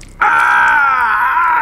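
A man's loud, agonized scream after being stabbed in the stomach with a knife bursts out after a brief quiet moment and holds as one strained, high, continuous cry until the end, with no talking.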